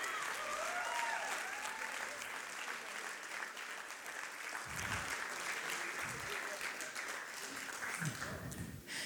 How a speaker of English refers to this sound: Why don't we give him a big round of applause?